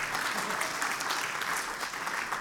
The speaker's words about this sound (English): I really wasn't looking for you to applaud them.